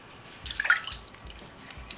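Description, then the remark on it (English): A short splash of 1/2 cup of water poured into a measuring cup for a fish marinade, a quick gurgling rush lasting under half a second, then a few faint drips. “First thing we need is 1/2 cup of water.”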